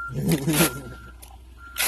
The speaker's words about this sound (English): Like a truck beeping.